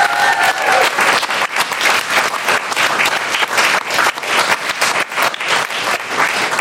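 An audience at a recording at Orange Studios bursts into sustained applause for two stormtroopers, dense overlapping clapping that stays loud and steady throughout, with a few brief whistles near the start and no speech over it.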